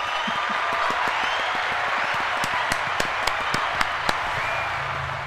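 A crowd applauds steadily, a dense wash of many hands clapping that fills the whole stretch, with a few sharper, louder individual claps standing out near the end.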